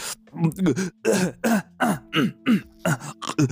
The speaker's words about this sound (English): Oh, by the way, we got the most positive feedback from last week's episode with you clearing your throat and burping during the entire interview.